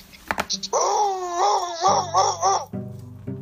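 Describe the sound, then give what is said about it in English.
A person imitates a Rottweiler with a loud, drawn-out voiced howl that wavers and pulses for about two seconds, turning to a rough, low gravelly rumble at the end. “Go on, do your dog impression.”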